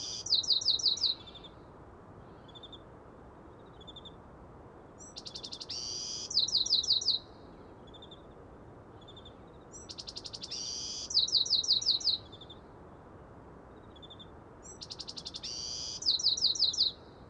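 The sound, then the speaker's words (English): A Bewick's wren, a small brown bird with its tail stuck straight up, sings its first song of the day: bright, buzzy, trilled phrases, repeating its song four times at steady intervals of about five seconds over a soft, constant hiss of background noise. “The bird is a Buick's wren.”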